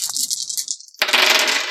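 A handful of ten dice clatter and rattle across a hard tabletop in two bursts, the second longer and louder, with no voices.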